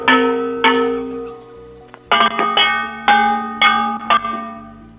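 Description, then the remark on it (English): Thick, re-tinned copper cookware is struck repeatedly, held up to a phone to check by its ringing that it is real copper. Each bang rings out with bright, sustained bell-like tones that decay slowly. About nine strikes come in an uneven rhythm, some in quick pairs, with no voices. “I'm measuring the frequency that the bangs make to make sure it's real copper.”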